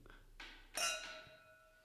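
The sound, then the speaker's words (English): Glasses of wine clink together in a toast: a light tap, then a brighter, louder clink whose clear ringing tone lingers and slowly fades. “Like we have started it, with a glass of wine. I think that's always good. Okay. Cheers.”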